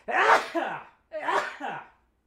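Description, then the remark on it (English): Two loud sneezes in quick succession, each a sharp breathy burst trailing into a shorter second gust, separated by a brief pause. “Oh, I'm going to sneeze.”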